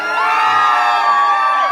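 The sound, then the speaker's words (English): A crowd cheers and whoops together in a loud, sustained burst of bright, high-pitched voices, holding steady for under two seconds without speech. “It's the one where we normally get a cheer, thank you.”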